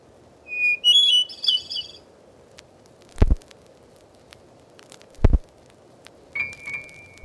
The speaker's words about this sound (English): Here are the songs and calls of 60 familiar birds, as recorded in the woods, fields, and gardens of North America by the Laboratory of Ornithology at Cornell University. Unless otherwise stated, they were recorded in central New York State.